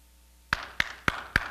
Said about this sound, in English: Even clapping, woo!